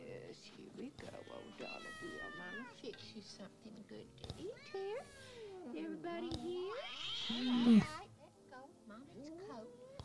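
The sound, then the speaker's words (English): A cat named Kopeck meows over and over, insistent, with drawn-out wavering cries that rise and fall, swelling into a louder yowl near the end. “Kopeck, you stop that, you bad kitty.”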